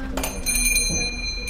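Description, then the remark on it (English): A small shop-door bell jingles with a few quick bright strikes, its high metallic tones ringing on and slowly fading over a low background hum. “The bell over the front door rings.”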